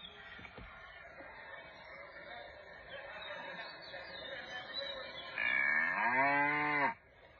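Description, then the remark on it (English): A cow named Bessie lets out one loud, drawn-out moo near the end, its low, wavering bellow rising above a steady hum of faint background noise. “Oh, it's Bessie, our friendly cow.”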